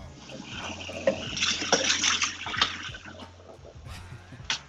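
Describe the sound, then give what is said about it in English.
Water runs steadily from a tap while dishes are washed, a continuous hissing splash broken by a few sharp clinks and clatters, with a low steady hum underneath and no talking. “Yeah, I guess back to the dishes.”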